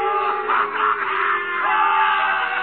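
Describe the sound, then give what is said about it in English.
A courtroom crowd at the trial of Emile Zola jeers in a loud, continuous roar of overlapping shouts and yells. The mass of voices swells and dips slightly but never breaks for the whole stretch. “The crowd encouraged to jeer at the man of truth.”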